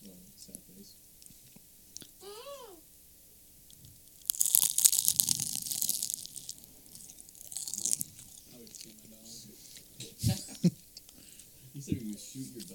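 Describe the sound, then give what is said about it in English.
Loud crunching of something crisp being bitten and chewed, with sharp bursts of crackle at the start and scattered crunches after, over a low murmur of voices. “Quick little ASMR. You're blocking out my crunch.”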